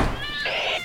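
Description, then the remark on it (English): A single high-pitched kitten meow, fairly loud, rising into a bright, harmonic cry that lasts under a second with no talking. “More kittens! Bring them to me!”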